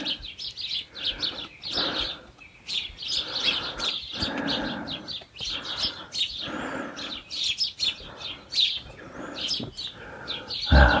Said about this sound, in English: Right, I'm going to withdraw to a safe distance so that these sparrows can get their breakfast. I can see one on the back of my chair getting ready.